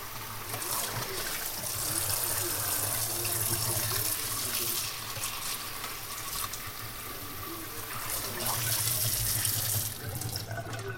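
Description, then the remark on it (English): Steady running tap water splashes continuously into a sink for about eleven seconds, with irregular rustling and knocking as a plastic meat package is rinsed under the stream before going into the plastic trash, in the Netherlands. “So I just rinse it out with a bit of water.”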